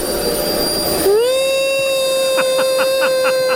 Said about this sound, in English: So that's why we need to just kind of hoover it up. Okay. Yeah. Could you just turn that on again?